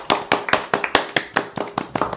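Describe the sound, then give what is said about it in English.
Brisk applause for two NYCFC soccer players, a goalie and a central midfielder, as special guests: sharp, distinct hand claps, about a dozen in a quick, steady rhythm, fairly loud and alone with no talking. “Give them a round of applause, y'all.”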